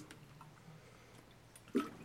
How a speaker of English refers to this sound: Okay, I'm about to read them to y'all, so let's get a drink of water.